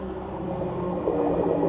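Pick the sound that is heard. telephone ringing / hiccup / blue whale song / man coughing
blue whale song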